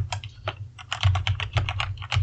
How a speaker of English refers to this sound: who's typing? Sorry, that's me angrily typing.